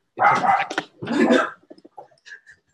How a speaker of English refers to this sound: Your dog wants to say something.